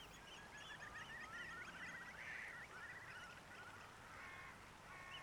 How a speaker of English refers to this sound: Walking along the shore, you notice various birds foraging.